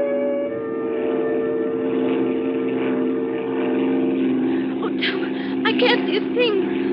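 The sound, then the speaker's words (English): A small propeller plane's engine drones steadily and loudly in flight, a constant hum, with voices briefly speaking over it near the end. “I don't need lights to land.”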